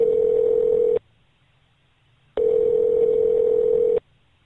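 A telephone line tone sounds twice as a call is placed to a listener who left her phone number, each a steady, loud buzzing hum lasting over a second, separated by a short silent pause. No one speaks.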